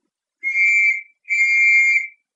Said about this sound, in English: As he swung into sight, the distant whistle shrilled again.